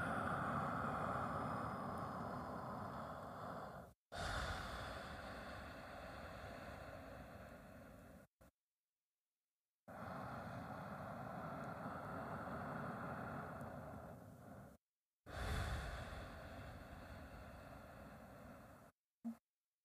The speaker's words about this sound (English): Listen to the sound of your breathing in and out.